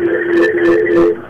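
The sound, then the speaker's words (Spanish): Sound from a caller's radio echoing back through a phone line during a call-in: a thin, band-limited hum with steady ringing tones and muffled, smeared bursts, continuous for over a second before fading slightly. “Todavía tenemos eco.”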